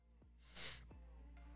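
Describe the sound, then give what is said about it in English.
A single sharp, hissy sniffle through the nose caused by allergies, rising and fading within half a second, followed by quieter breathy traces. No one speaks. “So you hear me sniffling.”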